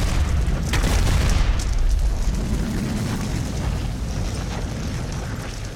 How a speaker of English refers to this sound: And then there's an explosion of blue light matching the color and the essence of the Sky Jewel itself. And the ship crashes.